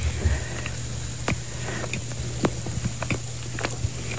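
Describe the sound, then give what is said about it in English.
Loud, wet chewing with irregular crunchy clicks and smacks, heard alone over a low steady hum, with no talking. “Bro, why you chew so loud?”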